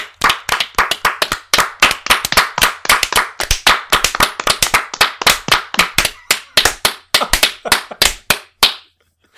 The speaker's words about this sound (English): This is a good episode. Good clap for 30 minutes there.